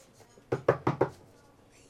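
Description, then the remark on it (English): Four quick, sharp knocks on a car window in a steady rhythm, fairly loud against a quiet background, followed by a faint sound just at the end. “Shitty McFuckface comes up, knocks on my window.”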